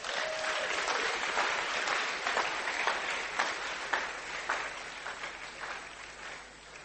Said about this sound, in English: Wow. Clap for Jesus.